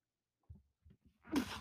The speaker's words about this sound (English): Excuse me. Sorry about that. Just had a sneeze. The truth is making me sneeze right now like crazy.